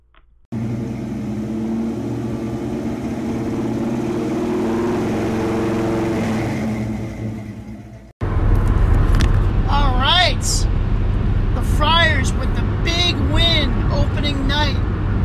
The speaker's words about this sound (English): here from my car, heading back from the dunk to Boston.